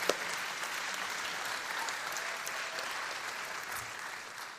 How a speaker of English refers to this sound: Yeah, we can clap for the teachers in the room.